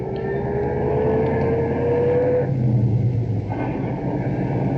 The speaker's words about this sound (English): Nice to be driving a car again. I didn't think it would happen.